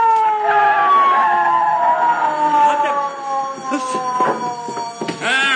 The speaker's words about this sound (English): Yeah. McGee, I hear a siren. Oh, so do I. It's the police, McGee. It's the police.